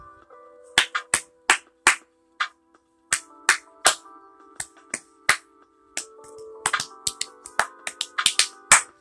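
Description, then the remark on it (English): Hand clapping in loose, uneven bursts, about twenty sharp claps with short pauses between groups, over a steady faint tonal hum in the background. No one speaks. “Sorry for my clapping.”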